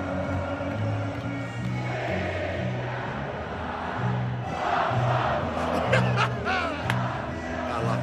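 A huge crowd of thousands sings along together in a loud, sustained roar of massed voices, the melody carried in steady held notes, with scattered whoops and cheers rising toward the end.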